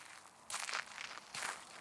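footsteps

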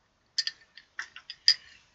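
glasses clinking

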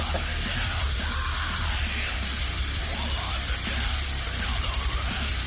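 man screaming

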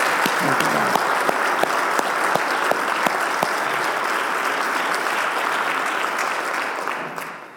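audience round of applause

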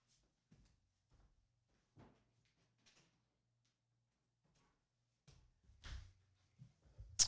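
door being closed

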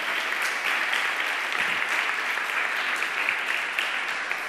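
audience applauding

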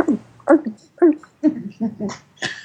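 dogs barking

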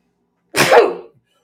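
a person sneezing

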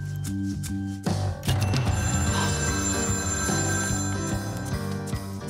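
telephone bell ringing

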